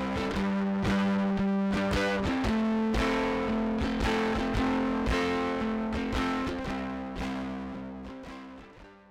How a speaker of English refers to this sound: The fuzz effect is almost a complete breakdown of the signal. It kind of turns the signal into a square wave.